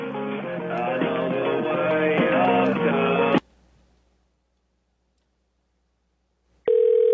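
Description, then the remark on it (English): Tinny, phone-line audio of dense, music-like sound cuts off into a few seconds of near silence, then a steady, loud telephone ring tone starts abruptly as a call goes through. “Did I dial that right?”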